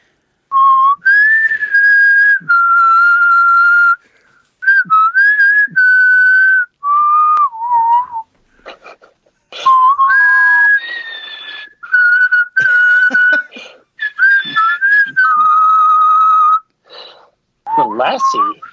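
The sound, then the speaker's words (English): Someone whistles a melodic tune, clear sustained notes in phrases with brief pauses and audible breaths between them, no talking. “How about I used to whistle that while waiting in line for Brahms, and people would just stare at us, and the whole point was to whistle all the way through without laughing, which was always very difficult.”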